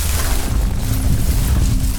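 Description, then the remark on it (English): A loud, continuous deep rumble of crumbling earth and stone as the forest floor gives way into tunnels below, thick with low booming noise and a gritty hiss, holding steady for about two seconds without any voices. “And with a crash, in a hail of crumbling earth and stone, she finds herself in free fall.”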